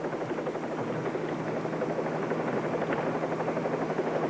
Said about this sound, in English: Helicopter 38 Bravo to Longwood Field. Over. This is Longwood Field, the helicopter 38 Bravo.